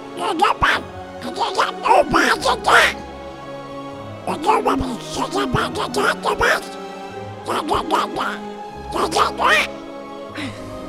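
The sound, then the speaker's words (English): A person does an impression of Donald Duck, voicing the character Cousin Greg as Donald Duck, spluttering garbled, quacky speech in four quick bursts with short pauses between, loud. “Can you do Cousin Greg as Donald Duck?”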